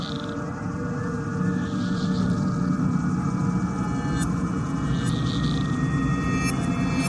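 A dense, droning ambient soundscape from a video game soundtrack, a piece of the six-minute Tristram track, with a steady low hum and sustained tonal layers, punctuated by faint high shimmering swells and occasional bright ticks, no voices.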